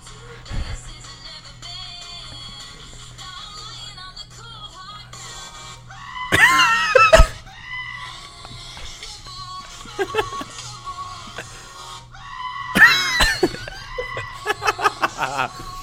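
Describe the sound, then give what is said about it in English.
A loud, sudden goat scream cuts into a song twice, each harsh bleating cry bursting over steady music with a low hum and tonal melody underneath. “I just love that someone was like, you know what this song needs? One of them screaming goats.”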